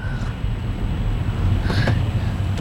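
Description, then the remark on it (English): Steady low rumble of road noise from inside a moving car, constant and fairly loud throughout, with a faint airy hiss and a few brief thin clicks on top. “You got two phones and a microphone, and you're driving this car right now.”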